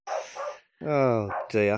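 A dog named Vinny barks loudly as a carer arrives at the house, giving a few drawn-out, yelping barks in quick succession, each one rising sharply in pitch.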